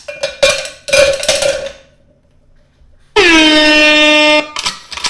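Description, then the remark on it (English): A blaring air horn sound effect blasts in a sustained loud burst after a few sharp, clanging percussive hits, followed by more short clattering hits; no talking. “I think I might like the cockback better than the air horn.”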